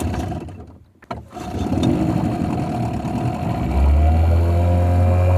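A motorboat engine drones steadily with a hum of water and wind. It dips briefly near the start, then a deep, heavy rumble swells louder toward the end.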